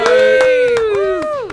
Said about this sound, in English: That wasn't an effect hand clap, by the way. No, that was our we do our own stunts.